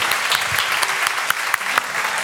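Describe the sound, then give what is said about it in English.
A large audience at Mosaic Church Austin bursts into sustained applause, a dense, steady wash of clapping with sharp individual claps popping out above it and some cheering mixed in, cheering and applauding the people standing who will be part of Mosaic Church Austin South. “Because we're gonna cheer you and applaud you and pray for you.”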